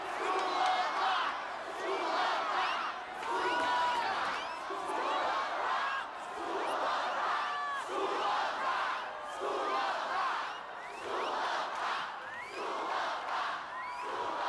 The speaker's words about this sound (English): It's an encore. They want us to go play another song.